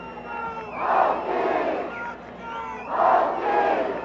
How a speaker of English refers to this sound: Bontac crowd trying to rally their pitcher who's going to stay in, it looks like.